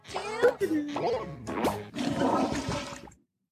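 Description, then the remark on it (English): A voice imitates a toilet flush for about three seconds, with gurgling, pitch-bending vocal sounds followed by a long, noisy rushing whoosh that cuts off abruptly. “That was a terrible... Flush.”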